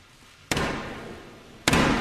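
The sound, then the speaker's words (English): Two loud, heavy ceremonial knocks by Black Rod on a door, a little over a second apart, each ringing out with a long echoing decay; no one speaks. “There's the black rod.”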